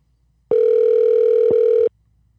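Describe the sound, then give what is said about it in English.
A telephone ringing out as a call is placed to a guest, a Division II basketball coach at the University of Northern Georgia: one steady, mid-pitched electronic tone with a buzzy edge, holding for over a second before cutting off. No one speaks. “We've actually got a special guest we're going to call on the Sip and Serve hotline”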